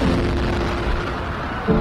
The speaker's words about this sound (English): First of the two explosions rocks the sidewalk along the course. White smoke blasting into the air.